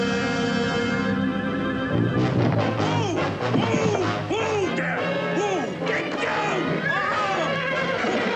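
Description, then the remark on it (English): A horse whinnies loudly and repeatedly in shrill, wavering neighs, layered over a dense musical backdrop with some crashing commotion, in a scene from a Disney movie. “But I'm going to have nightmares about that fucking horse and the well and the two shitty little dudes who find Darby at the bottom.”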